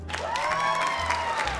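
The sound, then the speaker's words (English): A crowd of children in an audience claps and cheers together to show they like juice, a dense, steady wash of applause with excited young voices shouting over it, filling the space for a couple of seconds. “Clap if you like juice.”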